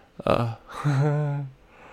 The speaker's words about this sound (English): Oh, shit. Uh-oh. Here's the first yawn of the podcast. Hopefully the last one.